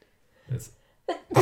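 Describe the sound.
A single sharp sneeze bursts out, preceded by a short intake of breath, with brief voice-like sounds around it.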